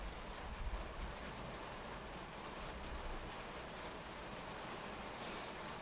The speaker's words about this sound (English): That rain is kind of overwhelming. We might have to wrap up. Oh, yeah. You think it's going to stop?